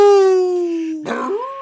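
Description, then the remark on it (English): A person lets out a loud howl into a microphone like a dog or wolf, one long sustained note that breaks into a rough, rising cry near the end. “And then you just howled in that ear.”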